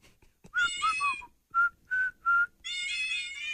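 A cat piano app, held up to the microphone on radio station 96.5 The Buzz, plays a little tune in F of high, pitched meow samples: a few quick gliding meows, three short evenly spaced ones, then a longer held meow, with no talking.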